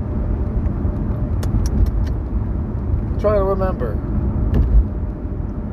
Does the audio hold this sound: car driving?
yes